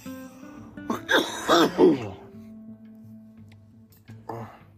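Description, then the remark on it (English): A quick run of three or four raspy coughs after someone quickly inhales smoke, followed by a quiet pause, a faint low hum, and one more short throaty sound near the end. “Weirdly enough, I know I'm coughing, but like it's not harsh, and I don't feel, you know what, I'm waiting for it.”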